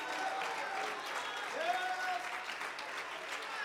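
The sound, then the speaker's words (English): An audience applauds steadily with scattered cheers and whoops, giving praise to God, a dense wash of clapping holding an even level throughout, with a few raised voices rising and falling above it. “Let me hear you give God one more praise.”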